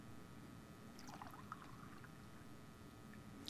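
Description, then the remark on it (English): Water pours from a pitcher into a glass in a short, gurgling stream that rises in pitch as the glass fills, fairly quiet over steady background noise. “I just filled this glass up with water.”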